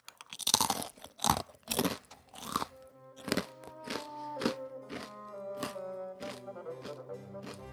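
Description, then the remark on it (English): Loud, sharp crunching of someone chewing crisp pita chips, a rapid run of bites at first, then slower, softer crunches over a steady humming musical tone. No one speaks. “Like, I always feel so fat when I eat these.”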